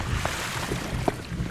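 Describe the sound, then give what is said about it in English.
Continuous sloshing water with a low, rumbling wash and occasional small splashes, heard inside a museum, with no voices. “But why are we hearing water noises? It comes from the museum.”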